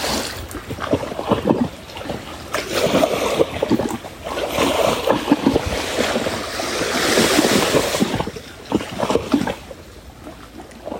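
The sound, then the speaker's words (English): Ocean waves wash in steadily with a broad, hissing surf that swells and recedes, strongest in the middle, with some wind rumbling across the microphone and no voices. “Bring the movement of the wave into your body.”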